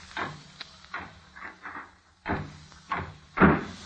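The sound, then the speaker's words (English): A library door is shut and locked with a series of wooden knocks and bumps, ending in a firmer thud as it closes and latches. No voices are heard. “I'd better lock the library door.”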